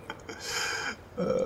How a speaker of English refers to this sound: … kind of burps again and gets on his horse.